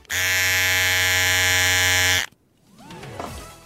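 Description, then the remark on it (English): An electric razor, played as a clue in the radio game Razor or Toothbrush, buzzes loudly and steadily for about two seconds with a dense, rich hum, then cuts off abruptly, leaving quieter swooping and chirping tones. “Razor. She's done it.”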